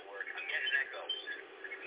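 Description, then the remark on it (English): A thin, band-limited voice over a phone line carries an echo, with the speech smearing and repeating faintly behind itself in a continuous, muffled stream. “I'm getting an echo.”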